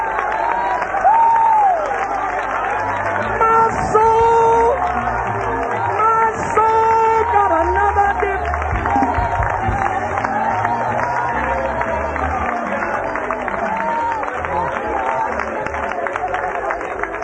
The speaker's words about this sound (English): Let us clap our hands together.